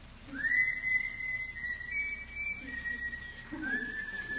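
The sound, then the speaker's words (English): Someone whistles a tune: a long, steady high-pitched phrase with slight wavers, a short pause, then a fainter answering phrase like an echo. No one speaks. “How did that tune go? Catchy.”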